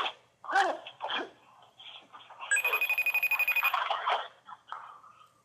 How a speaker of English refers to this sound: The phone keeps ringing.